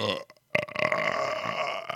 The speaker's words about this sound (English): I should edit that out, but that's a Godzilla-esque burp, motherfucker.